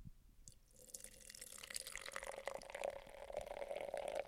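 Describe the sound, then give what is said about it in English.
Dark purple Mountain Dew soda from a just-opened container pours steadily into a glass, starting with a few splashes and building into a continuous gurgling stream whose pitch rises as the glass fills. “So I opened this thing up. I'm sure you heard that. I'm going to pour it now.”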